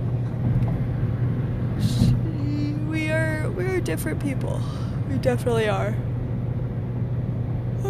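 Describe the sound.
Steady, loud road roar from a car moving fast on a highway at 80, driving home, a constant low rumble filling the whole stretch while a person talks over it.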